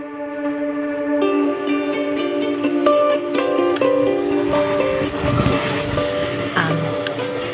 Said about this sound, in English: Now on the Amtrak from Penn Station to Albany, heading into some pretty hardcore unknown.